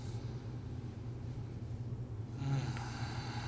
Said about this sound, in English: And I want you just to take a deep breath in through the nose.